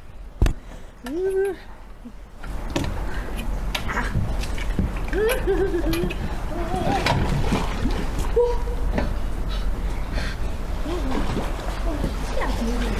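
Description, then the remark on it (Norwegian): A sudden burst of rushing, splashing water as someone jumps into the sea as a winter holiday activity, followed by steady churning noise, with voices calling out over it. “Og vi starter jo selvfølgelig sterkt ut med å hoppe I sjøen.”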